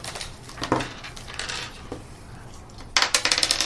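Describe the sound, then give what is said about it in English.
A six-sided die, rolled for a dog character's spirit in a tabletop game, clatters across a hard tabletop: a few scattered sharp clicks, then a quick, bright run of rattling clacks as it tumbles to a stop. No one speaks. “Sir Reginald. I got to unshake him, right? Yep, so roll his spirit. What is his spirit? A dog. D6.”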